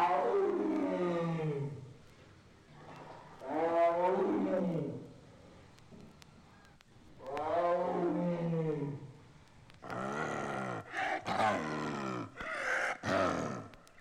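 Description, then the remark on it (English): Several long, harmonic roaring calls from a big Sumatran tiger, loud, with pauses between, followed by a series of shorter, harsher bursts near the end. “The Sumatran tiger calls.”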